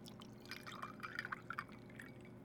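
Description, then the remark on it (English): Soft pouring of booze and soda water into a glass over ice, with a run of small drips and light clinks across a couple of seconds, quiet, with no one speaking. “I think this is a conversation we need to have over ice. And soda water. And booze.”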